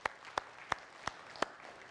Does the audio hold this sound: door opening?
no